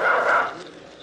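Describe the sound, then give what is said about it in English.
A tracking dog that has picked up a scent gives a single drawn-out bark that fades quickly into a faint, noisy background, heard at moderate loudness with no one talking. “Yes, dog's got our scent.”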